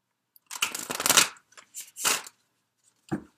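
Cards of the Tarot of Sexual Magic deck being shuffled: a long, crisp riffling burst, then a few shorter papery flutters and a final soft snap of the deck. No one speaks.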